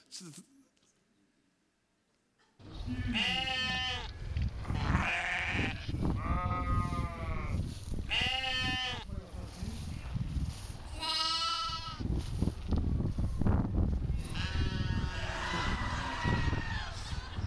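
A flock of sheep bleating loudly, one wavering call after another overlapping almost without pause, following a couple of seconds of near silence at the start.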